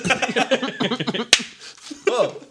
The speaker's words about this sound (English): hates being slapped in the face for no reason?